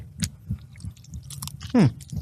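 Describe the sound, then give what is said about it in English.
Close-up chewing of food right at the microphone, with a steady rhythm of soft wet munches and small clicks, and one louder squelchy bite near the end. “No, you got to chew in the mic.”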